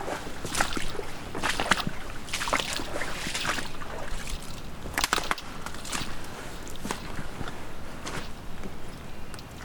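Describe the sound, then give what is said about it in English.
Water sloshes and splashes in a steady rhythm of heavy strides as someone in hip waders wades through deep floodwater in a flooded area, each step a broad, noisy surge with trickling between. No one speaks. “Now I'm in the flooded part. Now I'm in hip wader territory.”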